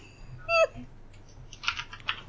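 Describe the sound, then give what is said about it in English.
A few quick, light clicks of keys being tapped on a computer keyboard, irregular, with a brief high chirping sound just before and a low steady hum underneath. “Let's continue typing, okay?”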